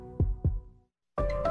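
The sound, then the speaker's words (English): A single heartbeat thumps twice, a deep lub-dub pulse, then a brief silence before a brighter, fuller sound abruptly begins. “We work in sync to make sure your heart beats in regular rhythm.”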